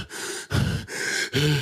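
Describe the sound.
A voice imitates rapid, shallow panting, as in hyperventilating: four quick, breathy gasps in and out in a steady rhythm, fairly loud, with no words spoken.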